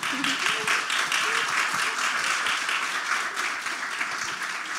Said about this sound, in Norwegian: Oi, vi klapper da.